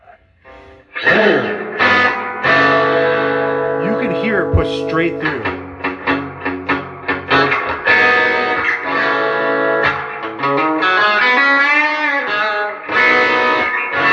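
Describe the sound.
Loud, heavily distorted electric guitar plays sustained chords and bent notes, ringing thick and full through two tube amps, a Rivera and a Deluxe Reverb, with a man briefly speaking over the playing.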